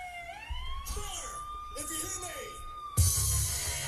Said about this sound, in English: No, that's not a dog. That's the police siren. Wait, who's the police coming for?